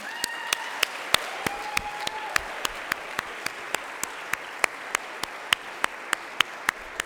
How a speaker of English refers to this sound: I also want to recognize the whole group of Nicaraguan SSTers. They're all right here. Would you all give them a round of applause?